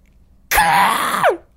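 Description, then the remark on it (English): A person voices a harsh, raspy monster scream imitating a creepy skeleton dragon opening its maw with a piercing scream: one loud burst just under a second long that ends with a quick downward slide in pitch. No other talking. “And then it opens its maw with a piercing scream.”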